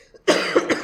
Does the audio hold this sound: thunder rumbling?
no